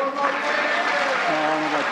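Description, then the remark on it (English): A crowd cheers steadily for Joe Biden at an appearance, with raised voices and shouts layered over a continuous wash of clapping, loud and sustained throughout. “I don't know what this was, but somebody out there is really cheering for Joe, and you'll hear how it went here.”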